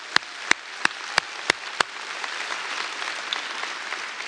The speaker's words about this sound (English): So besides, so let's give it up to your pastor and first lady. Just give him a hand clap.